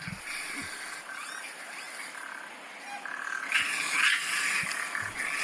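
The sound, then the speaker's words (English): Raccoons hiss steadily in a harsh, breathy wash, broken by short high-pitched squeaks and chitters that grow louder and busier toward the end, with no one speaking. “And the hissing and the squeaking.”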